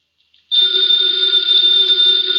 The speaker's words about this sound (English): Ladies and gentlemen, that phone bell means exciting adventure.